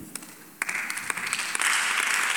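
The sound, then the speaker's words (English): An audience breaks into applause to give God a clap during a sermon, starting with scattered claps and swelling into dense, steady clapping from many hands that grows louder toward the end. “Come on, give God a clap of you.”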